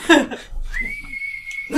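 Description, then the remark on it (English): A single sustained human whistle holds one steady pitch for about a second, sounding clear, with brief vocal sounds like laughter just before and after it. “like a whistle just emerges from your chin slot.”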